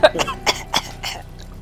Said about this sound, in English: She just coughs out.